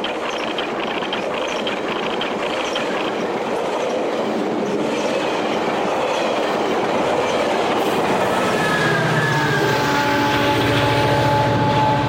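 A train rolls past, loud and steady, with rhythmic clickety-clack from the rails; toward the end a high metallic squeal rises from the wheels over the continuing rumble.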